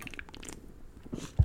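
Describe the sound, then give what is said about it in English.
A quiet sip from a large can of Foster's beer: soft wet slurping and small mouth clicks, then a short low thud near the end like the can being set down. “It's a take a little sip here.”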